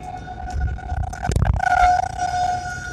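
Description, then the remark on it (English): An outdoor warning siren sounding at 1 o'clock holds a steady, droning wail through the whole stretch, its tone wavering slightly, with a brief low rumble partway through and no one talking. “Hell yeah, it's a 1 o'clock siren.”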